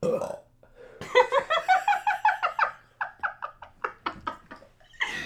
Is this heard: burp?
yes